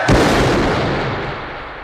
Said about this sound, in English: Cyrus raises his hands in the air, and David Patrick Kelly as Luther, one of the Rogues, collects the gun and shoots Cyrus in the chest.